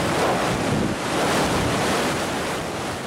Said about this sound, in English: Maria is the first Category 4 to hit there in nearly a century. 150-mile-an-hour winds ripping buildings apart, knocking out power everywhere.